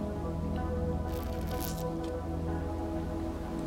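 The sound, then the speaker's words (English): A short, wet slurp of someone sipping hot coffee, a hissy burst lasting under a second followed by a brief second pull, over a steady low hum. “Hang on, I'm gonna get another sip of coffee here.”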